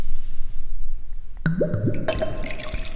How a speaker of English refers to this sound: Let's see how pee sounds being poured into a glass right now. Oh my god. This is some high fidelity pee, folks.